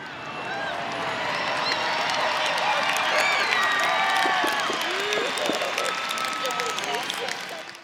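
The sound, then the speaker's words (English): A live show audience breaks into sustained, loud applause for the speaker's mother, mixed with cheering voices and shrill whistles, the dense clapping holding steady for the whole stretch before easing slightly at the end. “I ask you all to give my mom a big round of applause.”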